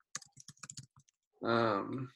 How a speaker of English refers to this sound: Type in like NASA. I'm typing in NASA telescope pictures.